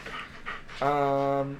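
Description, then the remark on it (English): A dog named Moose pants into the microphone, a couple of quick, breathy huffs, followed by a short steady voiced tone lasting under a second. “Moose, stop breathing into the mic.”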